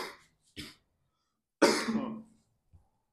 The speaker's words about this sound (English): No, he's just coughing on the mic. Don't cough into the mic, you asshole.